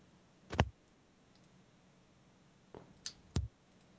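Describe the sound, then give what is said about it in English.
A handful of sharp, isolated clicks on a computer keyboard at irregular intervals, one early and a small cluster near the end, fairly crisp against a quiet background with no talking. “Oh, right. That wasn't you typing.”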